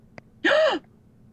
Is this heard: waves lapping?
no